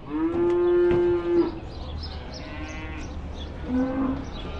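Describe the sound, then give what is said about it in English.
At the Frankton Sale Yards livestock sale in Hamilton, a cow lets out a long, loud moo, followed a few seconds later by a shorter, quieter moo, with a steady low rumble of yard noise underneath. “At the Frankton Sale Yards in Hamilton, there's no shortage of farmers to canvass about health and safety.”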